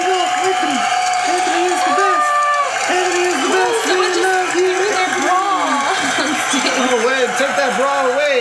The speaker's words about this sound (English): What do you guys think in the audience. Big crowd? I think the crowd's going wild.